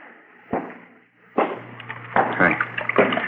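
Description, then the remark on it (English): Water runs from a turned-on tap, a steady splashing hiss broken by several sharp, clattering bursts, like water striking a basin or objects knocking in a sink. “Turn on the water tap, huh?”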